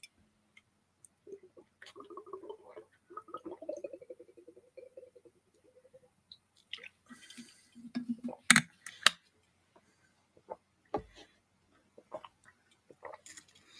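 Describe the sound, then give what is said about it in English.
A drink is sipped: a soft, wavering hum and faint mouth noises, then a few sharp clicks and knocks, like a cup being lifted and set down, with quiet smacking between. “Now, before I go on to the last segment, let me take a little sip.”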